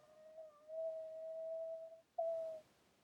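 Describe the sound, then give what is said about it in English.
Huli, a male dog, howls softly in his sleep while napping: one long, steady, muffled howl followed after a short pause by a briefer second one, with no one talking. “Oh, Huli's howling in his sleep.”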